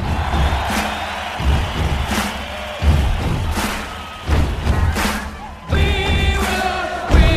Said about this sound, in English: we have very clean recordings of 14,000 people doing stomps and then individual claps